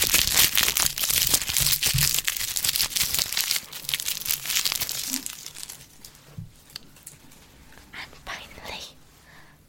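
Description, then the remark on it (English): A Snickers chocolate bar wrapper is scrunched up, giving a loud, dense burst of crackling and crinkling that thins into sparser, quieter rustles toward the end. “And now I shall scrunch and eat a Snickers packet.”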